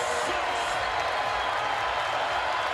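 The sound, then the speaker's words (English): An arena crowd at a basketball game roars in reaction as DeMarcus Cousins fouls out, a dense, steady wall of cheering and jeering that holds at full volume for about three seconds without a break. “And the crowd delights in the misery for DeMarcus.”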